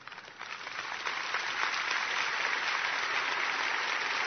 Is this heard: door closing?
no